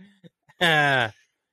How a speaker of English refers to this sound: Ooh, big yawn from the life coach. It's getting late for this one.